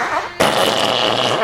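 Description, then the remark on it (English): A loud, sustained raspberry blown with the lips by a group of boys in a school class, a wet buzzing fart imitation that starts abruptly and carries on for over a second. “his boys make fart noises.”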